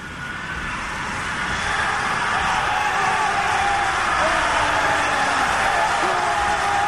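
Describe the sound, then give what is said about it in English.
A dense, sustained roar of a hundred layered Aztec death whistles mixed with ambient sound, swelling over the first two seconds and then holding steady, with wavering shrill tones over a harsh, noisy wash. “I layered 100 death whistles on top of each other, and I pulled in some ambient sound so we can kind of get an idea of what this would have sounded like.”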